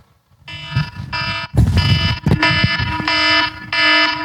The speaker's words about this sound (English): And it's easy to miss or become accustomed to those alarms that are in place to protect us from harm. But most of us can probably attest one of the most annoying alarms.